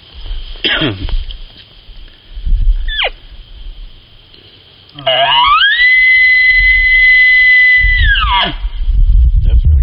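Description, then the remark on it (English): A seasoned human elk caller imitates an elk bugle: a low grunt climbs into a long, loud, high whistling tone that holds for about three seconds, then breaks off, after a few shorter squeals and rustling. “This is what a seasoned elk caller sounds like.”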